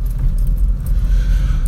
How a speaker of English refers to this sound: Oh, another cattle grid. Here we go, the vibration.